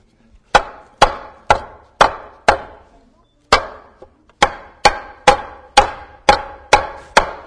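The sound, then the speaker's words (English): A hammer strikes wood about a dozen times in a steady rhythm, each blow a loud, sharp knock with a short ringing decay, with a brief pause partway through and no talking. “Okay, let me have my hammer.”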